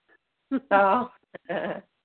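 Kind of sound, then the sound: animal, puppy making noise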